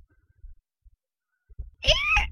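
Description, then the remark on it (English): A child's voice gives a short, high, squealing imitation of a rooster crow, one loud burst with a rising-then-falling pitch, after a stretch of near quiet with faint low bumps. “You were telling me the other day, what sound does the rooster make?”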